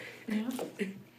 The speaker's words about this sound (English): That was my turn. That was really gross. Oh my god. What is it? Guys, I'm not even the one that's burping in this today.